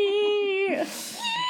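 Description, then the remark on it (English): A voice mimics a dolphin, starting with a steady, buzzy high-pitched tone that breaks into a noisy squeal and then a thin rising whistle, all fairly loud and with no talking. “Dolphin noise.”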